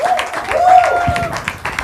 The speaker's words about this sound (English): I know you've clapped for me, but can we put our hands together for the Lord Jesus